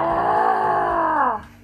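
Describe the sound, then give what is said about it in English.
A single loud, drawn-out wild cry, a steady strained voiced wail held for over a second before its pitch sags downward and it breaks off abruptly. “Something of a wild cry.”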